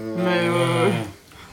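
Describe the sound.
A person imitates a cow's moo with one long, loud, low droning call lasting about a second, followed by quiet.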